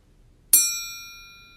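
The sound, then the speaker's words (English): A spoon, picked up to eat soup, accidentally taps a knife once, giving a bright, high metallic ring that hangs in the air and slowly fades. No one speaks. “That is literally my spoon tapping my knife.”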